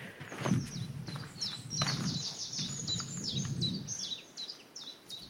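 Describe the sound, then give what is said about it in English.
A chiffchaff sings a steady run of sharp, alternating high notes, clear, over a low rumble of footsteps and outdoor movement as someone walks past hazel coppices along the Wansdyke. “Chiff-chaff. Chiff-chaff, it's literally saying winter is over.”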